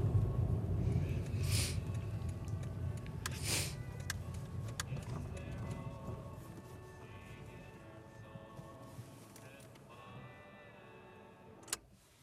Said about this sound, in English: The car stops.